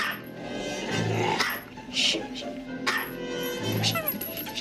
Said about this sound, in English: this film has the same problem as You Lucky Dog, which is like a lot of the soundtrack is loud, piercing dog barks. More so here because it's a very yappy dog.